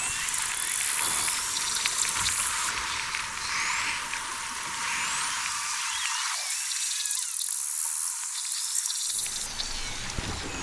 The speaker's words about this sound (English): The orcas are trailing behind the boat now, so the marine scientists have launched their underwater microphones to try and capture their calls, and this is what they can hear. Orcas communicating with each other.